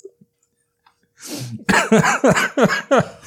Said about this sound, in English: As I have a coughing fit, I think that's a perfect phrase to end this episode on.